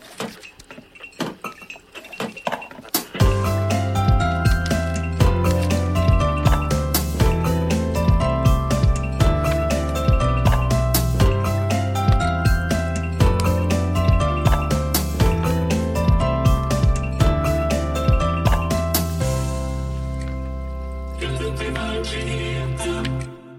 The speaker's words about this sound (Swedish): Så jag känner att vi kanske kör en liten vignett.